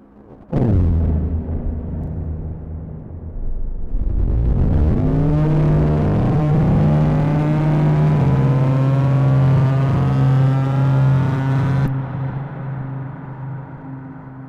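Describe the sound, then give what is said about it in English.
A loud, eerie drone from a three-module synthesizer patch with its rate slowed down holds a low steady pitch while its harmonics sweep and shift, changing abruptly in distinct steps over about fourteen seconds, with no voices. “So now that I've slowed the rate down, got this very spooky kind of stepped changing drone.”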